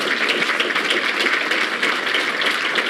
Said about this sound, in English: Let's all applaud them really good, nice and loud.